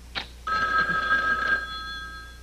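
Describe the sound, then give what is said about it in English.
A telephone rings in a late-1980s sitcom scene with a bright, electronic trill, sustained for about a second after a brief click, then fading out; it is heard alone without voices. “The phone rings and Will actually puts, like, a giant lampshade on sitcom tropes.”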